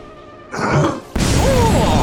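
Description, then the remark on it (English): A rushing burst of noise as a rocket soars through the air gives way to a sudden, loud explosive blast as it strikes a beast on a skyscraper roof, roaring with dense, rumbling noise to the end, with faint whistling tones in the roar. “Fiery bits of beast flesh flopped down onto the roof of the mighty skyscraper as the shockwave from the explosion rocked Billingsley ever backward, closer and closer to the edge, where the safety fence had been destroyed by the rocket blast.”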